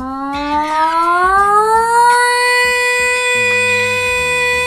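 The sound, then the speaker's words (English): A person imitates an air raid siren with their voice: one long, loud wail that climbs slowly in pitch and then holds steady, with faint low rumbling underneath. “You know, I can do an air raid siren.”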